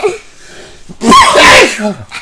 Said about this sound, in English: why do you always do those sneezes?